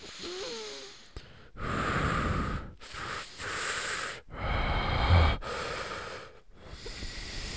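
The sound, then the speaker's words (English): A voice imitates Shane McMahon's heavy breathing over his incredibly loud mic in a segment with Braun Strowman, breathing into the microphone with about five loud, rasping breaths in and out separated by brief pauses, each one hissing and roaring with air. “Shane McMahon's mic was incredibly loud, and you could hear him breathing like this.”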